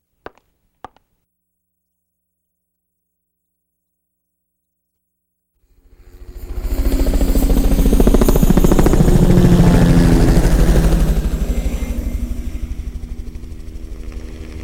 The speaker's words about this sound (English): we got to add a special guest, which is an air evac helicopter.